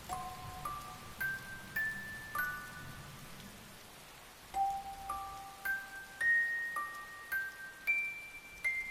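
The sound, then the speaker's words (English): A music box, wound up, begins to play softly, tinkling out a slow rising melody of bright plucked notes, repeating the phrase after a short pause, with a faint rain-like hiss beneath. “You can hear the winding of a music box begin to play softly.”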